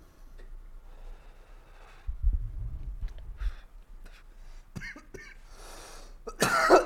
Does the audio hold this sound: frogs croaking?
no